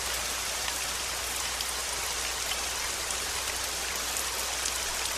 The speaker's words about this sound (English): And we just listen to the rain, and the countdown circle counts down to 30 seconds. Just listen to the rain and you look at the leaves.